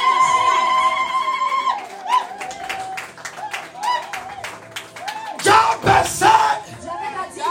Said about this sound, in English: Oh, are you clapping at all? Clap and shout.